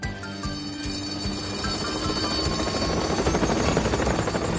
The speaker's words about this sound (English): It wasn't long before the Duke and Duchess heard the sound of Harold the helicopter. Oh, my! Harold landed on the road next to Bertie.